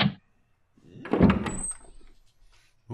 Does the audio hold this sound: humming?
no